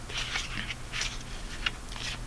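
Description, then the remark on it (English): A deck of tarot cards being shuffled before the last flip in the game Spiritual Warfare (Tarot Card Battle): a run of soft, papery riffling bursts, five or six crisp rustles in quick uneven succession, fairly quiet with no voices. “Gotta shuffle my deck a little bit.”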